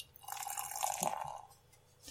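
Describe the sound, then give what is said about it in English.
Beer, 7% alcohol by volume and black in colour, pours steadily from a bottle into a glass for about a second, a gurgling, splashy stream that swells and then tapers off into quiet, with no talking. “And the pour.”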